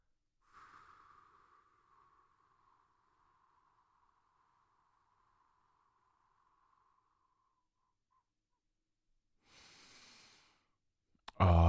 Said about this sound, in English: I hope that you are breathing well. Let's take a big exhale.